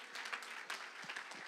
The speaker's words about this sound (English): Oh, come on, clap a little bit longer. Come on, clap a little bit louder. Come on, give him a little bit more praise.